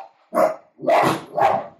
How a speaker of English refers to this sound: Oh, goddammit, Hans. Come on. All right. Hold, please. My dog is barking at people outside.